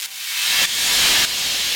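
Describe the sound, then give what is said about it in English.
A steady rush of radio static, bright and hissing, answers an unanswered radio call to headquarters at a lake, filling the whole clip with two small jumps in its texture along the way. No voices come through the noise. “Another blast of static and silence.”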